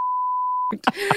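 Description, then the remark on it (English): A single flat, steady censor bleep holds for just under a second, then cuts off abruptly as a person begins talking. “Uh-oh, we've got the first beep within the first 3 minutes.”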